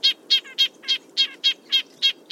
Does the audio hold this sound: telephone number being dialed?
no